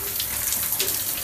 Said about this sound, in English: It is wonderful Radio … broadcasting live from the shower.